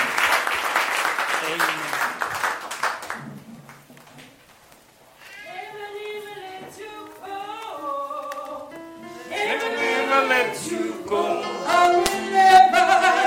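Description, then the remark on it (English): An audience bursts into a loud round of applause to the Lord for his words for about three seconds, fades briefly, then voices begin singing a sustained, melodic hymn that grows fuller toward the end. “Can we just give the Lord a round of applause for his words?”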